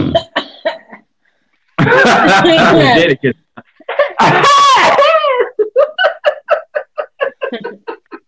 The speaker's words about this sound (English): Them allergies acting up again. Yeah. Let me clear my throat.